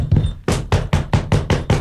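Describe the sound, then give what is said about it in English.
A quick, steady run of loud knocks, about seven sharp raps in a row, evenly spaced: someone knocking on a door with their knuckles. “Gee, you know that groovy sound sort of sounds like somebody knocking on the door.”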